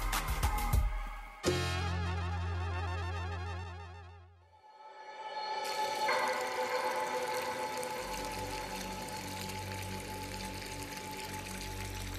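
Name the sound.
water running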